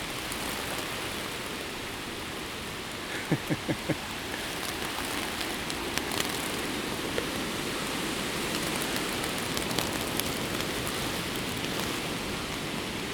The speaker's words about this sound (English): It's really quite beautiful. Turn this down a bit. It's really beautiful to be in the forest and the rain. It's pouring out.